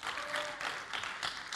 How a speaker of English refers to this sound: And we ended up naming it the living room. And it's just this beautiful, wonderful place to be. But what about, okay, we can clap for that.